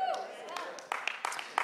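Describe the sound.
Scattered, sparse clapping from just a handful of people, the speaker's family, with a few uneven hand claps standing out over a faint murmur of voices.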